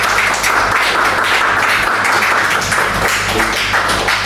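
A room full of people applauds together, a steady, dense wash of many hands clapping at once that stays loud and even for several seconds.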